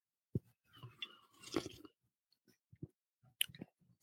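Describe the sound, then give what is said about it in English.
Sipping Manhattan Special sarsaparilla soda from a freshly opened bottle: a few short wet mouth clicks, a soft slurping gulp in the middle, then quiet smacks and swallows, with no one talking. “So we're going to open this up on air right now. You hear that? Psst. Sounds good. Here we go. All right. First sip.”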